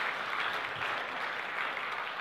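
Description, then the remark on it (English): A crowd applauds steadily, a dense wash of many hands clapping at once with no pauses, holding an even loudness for a couple of seconds with no voices on top. “That's a round of applause moment, I think.”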